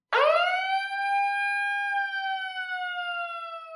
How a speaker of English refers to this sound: And holy crap, get the siren, because this hit me in the feel spot.